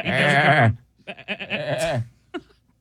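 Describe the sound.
A man loudly imitates a sheep, starting with a long, quavering bleat, then a run of shorter warbling bleats and one brief final bleat, with no other voices.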